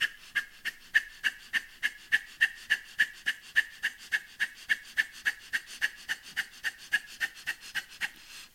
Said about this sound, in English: And as you continue with it, fully attuned to what you're feeling. Calm, relaxed, steady as can be amidst the Kapalabhati. Just a few more cycles.